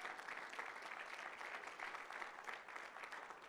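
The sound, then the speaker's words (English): Sustained applause from a crowd giving a clap offering to the Lord, dense overlapping claps forming a steady, fairly loud wash of sound throughout with no voices standing out. “Let's give the Lord a clap offering again.”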